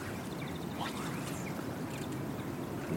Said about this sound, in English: cast right over to where that green finches are singing away. Wheezing away. Yeah. Who was it who said the most vulgar of birds? The green finch?